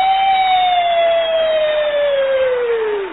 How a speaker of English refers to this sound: Now you coming down the street with the gay siren.